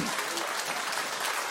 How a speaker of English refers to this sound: Hallelujah. Give God a hand clap.